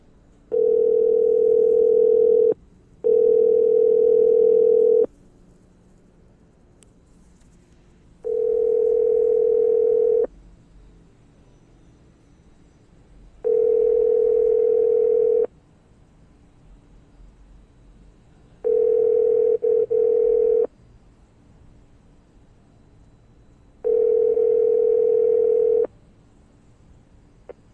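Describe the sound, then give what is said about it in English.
A telephone ringback tone repeats six times on an outgoing call, each steady mid-pitched burst lasting about two seconds with short gaps between, the first two rings coming close together. No one answers and the call goes to voicemail; no voices are heard. “All right, well, young fella not answering right now, so we're gonna reach back on to him and see what's good with him a little later.”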